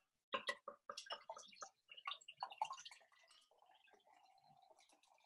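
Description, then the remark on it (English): Fizzy ice cream pale ale pours into a glass, starting with a burst of uneven glugs and splashes, then settling into a steady, soft crackling fizz as the bubbles rise, fairly quiet. “I wonder if it's picking out the audio now. It should do. Very fizzy. Very fizzy, this is.”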